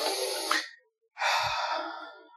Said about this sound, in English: Oh, you get a big whiff of that grapefruit. Give it a sniff.